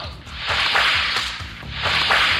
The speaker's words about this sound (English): When you hear the bullwhip crack like this.